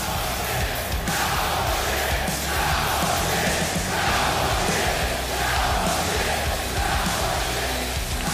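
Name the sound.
crowd yelling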